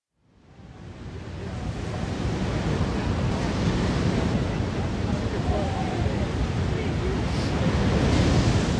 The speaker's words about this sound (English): Without further delay, other than the sound of the ocean, Shahid Buttar, congressional candidate for California's 12th district.